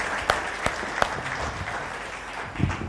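A round of applause from a group, steady dense clapping with a few sharper individual claps standing out, moderately loud and continuous throughout.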